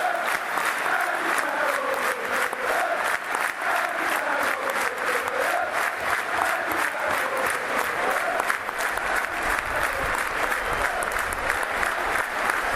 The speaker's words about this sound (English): Victor Moses getting a round of applause, standing ovation. Played a good game, deserved a goal.